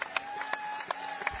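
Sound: crowd applauding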